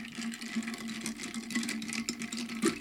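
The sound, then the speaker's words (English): A cocktail is stirred in a glass with a steady mechanical whir and buzz, running continuously for a few seconds with faint rattling underneath, and no one speaking. “in order to drink this cocktail properly, I have to mix it”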